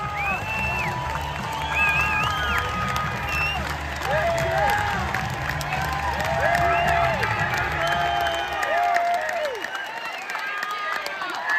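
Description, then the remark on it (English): A large crowd applauds and cheers steadily and loudly as Danielle Smith takes to the stage, a dense wash of clapping with rising whoops and shouted calls on top, easing slightly near the end. “Here's the applause for when Danielle Smith took to the stage.”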